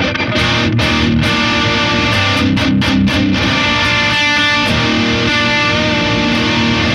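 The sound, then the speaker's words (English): An electric guitar plays through an overdrive pedal set with bass, middle and treble at 2 o'clock, gain just below noon and volume at 3 o'clock, giving a thick, gritty distorted tone with sustained chords and brief choppy breaks, loud and steady with no voices. “The gain is just below noon, and the volume is at 3 o'clock”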